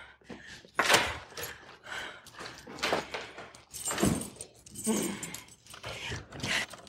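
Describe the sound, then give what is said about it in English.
Keys jangle and clatter in several bursts, mixed with rustling and handling noises, a soft thump or two, and quiet breathing or murmured voices underneath. “I need the keys.”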